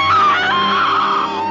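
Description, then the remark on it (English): A woman's loud, sustained scream of anguish, high and wavering, filling the whole moment with no other sounds or speech around it. “The scream of devastation.”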